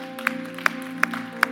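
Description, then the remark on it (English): Four sharp, evenly spaced claps ring out in a steady rhythm as a church audience gives themselves a hand in unison, over a sustained low tone. No one speaks. “Give yourselves a hand clap.”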